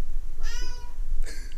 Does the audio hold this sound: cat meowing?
yes